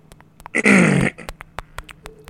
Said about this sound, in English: I had to clear my throat.